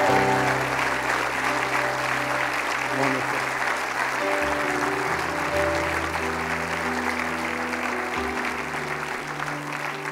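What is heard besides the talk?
audience round of applause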